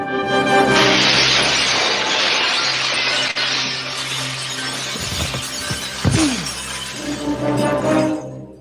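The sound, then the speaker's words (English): A man with an eye patch is thrown backwards through a large decorative glass wall in a Paris nightclub: the pane shatters loudly, and a dense crash of breaking and tinkling shards rains down for several seconds, with a few heavy thuds partway through. “A man with an eye patch goes flying backwards through a large decorative wall of glass.”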